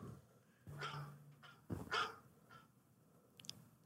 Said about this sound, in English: No, it's just my alarm. For real? Your alarm is dogs barking?